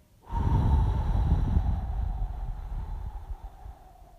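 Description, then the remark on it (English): A single long, slow breath pushed out through pursed lips for about eight seconds as part of a 4-7-8 breathing exercise, a steady whoosh that gradually fades, with no talking. “So you breathe in for 4, hold for 7, and breathe out for 8.”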